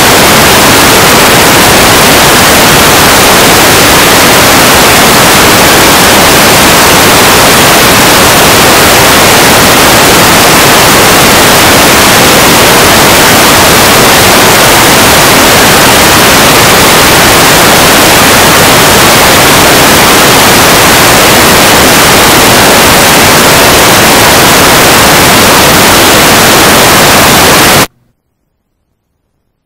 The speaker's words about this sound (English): Hey folks, sorry about the static. My mic died. How about that? I need some new batteries. Well, apologies on the ears. Yeah, apologies on your ears. How long did that happen? About a minute.